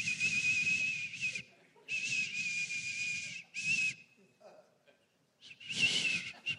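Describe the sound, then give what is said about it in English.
A high, steady whistling sounds from somewhere inside a house at about 2 a.m., in four drawn-out bursts separated by brief pauses, fairly loud and airy, with a faint low rumble underneath and no one talking. “Recently, it was like 2 o'clock in the morning, and I heard this whistling coming from somewhere inside the house.”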